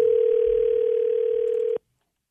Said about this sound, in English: The time has come, and I am so excited to make this call. All right, we have it dialed up here. Let's see. Hopefully, we can get them on the phone.